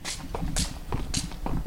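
Steady footsteps walk out to a barn where animals are kept, at an even pace, each step a soft, gritty crunch repeating roughly twice a second, with no talking over them.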